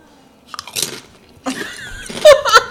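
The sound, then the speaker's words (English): Crunching as something crisp is bitten and chewed, several bursts of noisy crackle separated by short pauses, loud with no talking. “A little crunchy over there, mm-hmm.”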